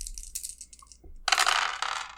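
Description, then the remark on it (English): Three dice are rolled in a game and clatter and tumble across a hard surface, a few light clicks first, then a louder rattling roll that settles after about a second. No one speaks. “Okay, so call it a tense roll, three dice.”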